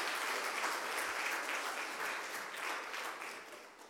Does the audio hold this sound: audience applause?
yes